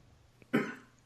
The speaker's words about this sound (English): give me a coughing fit. Until he stops.